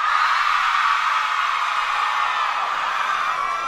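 A crowd of girls screams excitedly in a sustained, high-pitched roar that stays loud and steady for several seconds without letting up.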